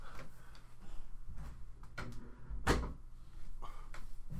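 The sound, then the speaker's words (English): A door swings shut with a solid thud, preceded by a softer knock and faint rattling, with no one speaking. “This dude didn't even close the door.”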